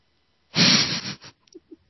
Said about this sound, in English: I think he just sneezed himself away. Yep, sneezed. I sneezed. Do you sneeze and disappear? Is that what happens in Norway?